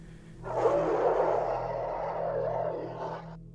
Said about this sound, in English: Until out in the distance I hear a muffled roar.